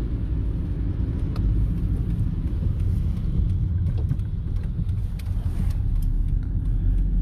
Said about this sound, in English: The hill has been pretty wet, and my car has been sliding up, going up this hill.